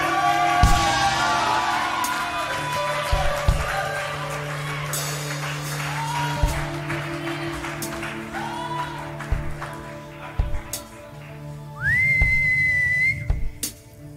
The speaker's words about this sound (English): Sometimes I whistle during worship. I go, I just like doing it.